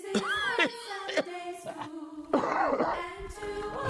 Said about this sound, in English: Get all the coughing over with, fellas.